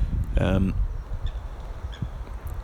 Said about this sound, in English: I'm being pecked by the other three hens. I've got no treats left for you, I'm afraid, girls, but they seem pretty happy to be pecking my shins and my boots.